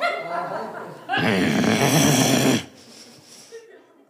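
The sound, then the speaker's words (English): A man growls like an animal after bashing his head into an open cupboard door in a kitchen, starting with a voiced rumble that bursts into a loud, harsh, raspy snarl for about a second and a half before fading into a quieter trailing rasp. “I bash my bald head into an open cupboard door in the kitchen, and before I even think through a response, I growl like an animal.”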